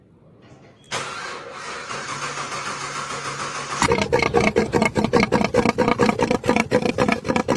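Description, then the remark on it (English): A car engine cranks with a steady whirring hiss for a few seconds, then fires up into a loud, choppy, rapidly pulsing rumble that keeps throbbing. No one speaks. “That Corvette probably wishes it sounded that good.”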